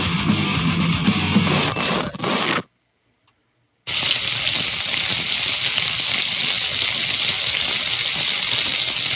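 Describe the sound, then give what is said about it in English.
Meat sizzling in a pan: a loud, steady hiss with scattered crackles and pops. It breaks off for about a second of silence, then resumes just as strongly, with no voices. “You're right, Bob. It is meat sizzling.”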